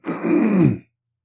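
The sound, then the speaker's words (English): A single gravelly throat clearing lasting under a second, a rough low rasp that swells and then cuts off into silence, with no talking. “It makes me, like right now, I have to clear my throat.”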